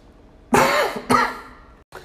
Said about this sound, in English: And I'm sorry you guys had to hear me cough. I didn't realize I was still recording when I coughed.